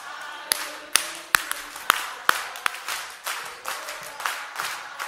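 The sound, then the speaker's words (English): An audience claps together while dancing in a steady, brisk rhythm, sharp synchronized claps landing roughly twice a second, then blurring into a looser, busier patter of hands toward the end. “The way we do it, you don't just clap, you dance.”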